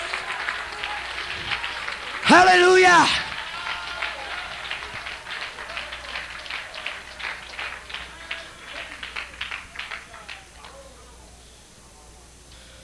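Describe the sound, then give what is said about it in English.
A church audience breaks into sustained hand clapping during a sermon, dense and steady, after a loud shout by a voice; the applause continues for several seconds before gradually thinning out and fading. “Oh, let's give him a hand clap.”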